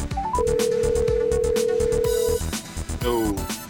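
A phone call to a guest rings out: one long, steady electronic ring tone, then the start of a second, over a busy, rhythmic music bed that stays loud throughout.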